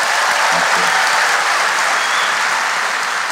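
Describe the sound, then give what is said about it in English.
A loud, sustained round of audience applause for Jeffrey Toobin at the Town Hall, dense crackling claps filling the whole clip at an even level with no pauses. “I have a couple of final words, but before I do that, everyone, big round of applause for Jeffrey Toobin.”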